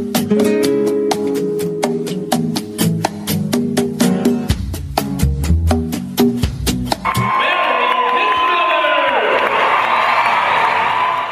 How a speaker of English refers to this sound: Isn't it great to start the show with applause for you?